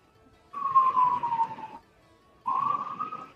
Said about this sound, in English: Listen, sirens. It's been. Yeah. It's the Guardians trying to figure out this heist that happened one block over.